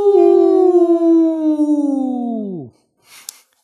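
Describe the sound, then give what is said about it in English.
A person imitates a wolf howl: one long, loud sustained note that slowly sinks in pitch before dropping away, followed by a brief breathy sound. “You want a howl for him?”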